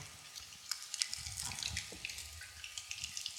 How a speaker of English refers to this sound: Then it says he took a cup. So just peel back the foil.